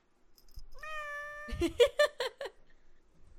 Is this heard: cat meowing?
yes